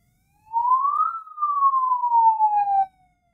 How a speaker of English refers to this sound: Those are the police. Actually, it sounds like a fake police siren. Yeah, what the heck is that?